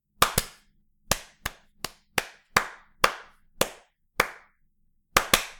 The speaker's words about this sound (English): Those are lame claps. I'm just not getting a good...